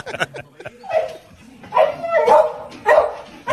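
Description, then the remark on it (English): A dog watching horse racing yelps and barks excitedly in short, high-pitched, loud bursts, with whiny vocal cries between the barks and some faint background noise. “It's a dog watching horse racing.”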